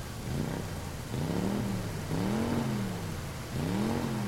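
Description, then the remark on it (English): A Ford Fiesta's engine drives up, its headlights lighting a phone booth, its low hum climbing in pitch through several revving surges, each rising whine dropping back before swelling again. Steady and fairly loud, with no voices. “suddenly the lights of a Ford Fiesta illuminate this phone booth.”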